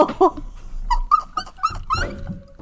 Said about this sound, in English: You didn't hear my dogs today. Sorry, it's just happening.